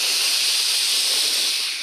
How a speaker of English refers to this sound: Now open your eyes, take a rich inhale through your nose, fill your belly.